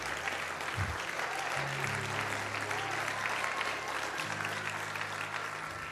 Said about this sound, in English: Come on, that ought to make somebody clap your hands.